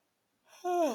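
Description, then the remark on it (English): A breathy yawn begins after a short silence, rising into a drawn-out voiced groan that slides downward in pitch and is still going when the sound cuts off. “I have to yawn.”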